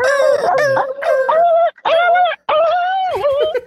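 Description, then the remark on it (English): A person vocally imitates the yelp a dog makes when pinched or hurt: a few loud, high, whining cries that rise and fall in pitch, separated by brief breaks, with no other talk. “When you pinch a dog or like when you hurt a dog, they do that like god awful sound.”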